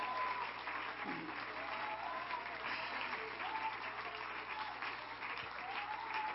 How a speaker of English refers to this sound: Hallelujah, hallelujah. Come on, clap your hands to Him right now. Praise God.